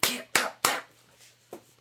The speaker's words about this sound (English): You clapped a little too hard, and that hurt my ball sack, even though it was nowhere near my ball sack.